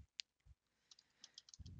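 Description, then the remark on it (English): Quiet computer keyboard keys clicking in a quick, uneven run of light taps, with a couple of soft low thumps in between and no one speaking. “I turn this off, or did my controller, did my keyboard die?”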